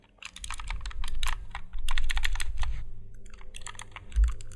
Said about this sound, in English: Okay, so it is a keyboard for one hand. It has like, let's see, five. It's got 20 keys on it, and each key's programmable. And it's like a, it's almost like a mouse.